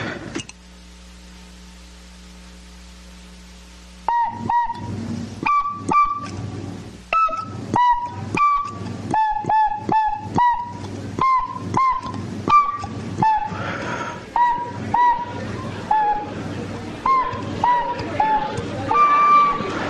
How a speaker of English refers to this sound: Let's play another song. A little tin whistle here.